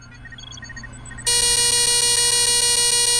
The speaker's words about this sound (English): an alert coming out of the inkjet printer.